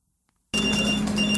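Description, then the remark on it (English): After a brief moment of silence, a phone abruptly starts ringing, a loud, steady electronic tone that holds without a break to the end. “The chit-chat of colleagues, someone's phone going off, constant computer notifications.”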